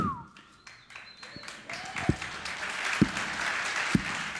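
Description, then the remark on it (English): Three loud, sharp hand claps land about a second apart over a swelling wash of applause-like noise, with murmuring voices underneath at the start. “This clap is for you.”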